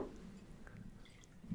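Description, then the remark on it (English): Beer being poured, a faint, steady liquid gurgle with small drips and splashes lasting a second or two, no voices. “As I in, fucking pour my beer.”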